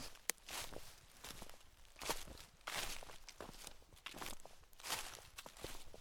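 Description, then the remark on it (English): Footsteps crunching and rustling through dry fallen leaves at a steady walking pace, moderately loud, each step a crackly burst, with no talking. “Footsteps on fallen leaves.”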